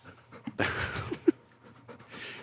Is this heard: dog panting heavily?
yes